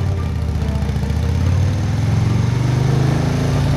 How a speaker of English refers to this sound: He revved the engine, released the brake, and was on his way.